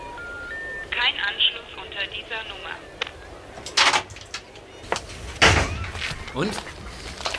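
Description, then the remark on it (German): A few short rising beeps of a number being dialed on a payphone in a phone booth, followed by clunky handling noises and knocks, with indistinct voices murmuring in the background. “Da vorne ist eine Telefonzelle. Lass mich doch mal die Nummer wählen.”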